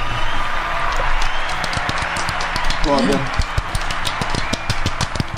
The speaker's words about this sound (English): So I'm being instructed that they need a round of applause.